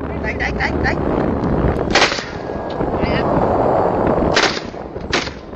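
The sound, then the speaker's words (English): Several sharp gunshots crack out at irregular intervals at sea near large steel tuna longliners, a few quick early pops followed by louder single blasts, over a constant rough rumble of wind or engine noise. “These are big steel ships, and very early on into the video you start hearing gunshots, and that's when I immediately stopped everything else I was doing and focused.”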